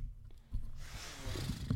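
A nose being blown: a low, rumbling snuffle gives way to a sustained, breathy honk of rushing air that lasts about a second, moderately loud, with no talking.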